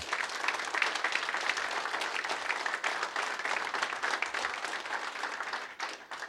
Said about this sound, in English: So let's just give them a hand clap. Honor.